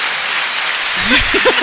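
A short burst of clapping applause, a sound effect played from a button, plays steadily for a moment, with a voice starting to talk over it near the end.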